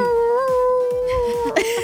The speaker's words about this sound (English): That's her husky. Sounds like a husky.